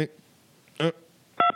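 A few short electronic telephone tones beep in quick succession, clear and fairly loud, with brief quiet gaps between them as an incoming call to a program connects.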